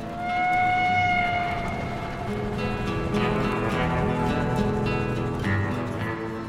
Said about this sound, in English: Folks in these parts don't take kindly to strangers asking about it, but when the full moon is bright and the night air is calm, you can hear it chug, chug, chugging its way between Denver and Boulder. They call it the ghost train.